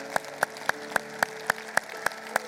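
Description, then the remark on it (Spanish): Clapping after a prayer, in a steady, even rhythm, about nine sharp claps a little over three per second, over a low constant hum, with no voices. “Un aplauso.”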